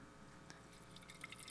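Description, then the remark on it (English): Water is poured into a container, a soft, steady trickle with a few brighter drip-like plinks toward the end. It's quiet, with no talking. “So the water was coming down from another city. So pour it out, pour it in.”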